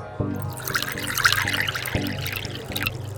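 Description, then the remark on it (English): Wine pours steadily into a glass under a table in the audience at a spelling bee, a bubbling trickle with glugging splashes, accompanied by a low hum and faint periodic thumps underneath. “She pours a second glass of wine under the table.”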